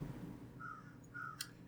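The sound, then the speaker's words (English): Two short, hoarse caws from crows right outside a window, faint, spaced about half a second apart, followed by a brief sharp click over a steady low background hum. “I do love the crows in the background.”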